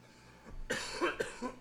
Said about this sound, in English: Oh, you talking about your cough. Yeah. I thought he was talking about me inhaling. Now I realize I'm fine. It's you, motherfucker. That's what he's saying. I'm coughing.